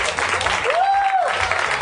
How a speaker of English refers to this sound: Keep your applause going, if you would